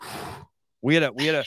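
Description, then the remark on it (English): A voice imitates heavy, muffled breathing behind a face mask: a rough breathy exhale, a brief pause, then two loud, strained groaning breaths in quick succession. “This is what I sound like behind my mask. I love breathing in my own oxygen.”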